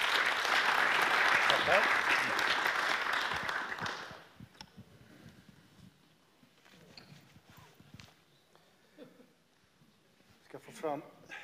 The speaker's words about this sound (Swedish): Så bakom mig här så har jag ett gäng. Vi ger dem en applåd från början.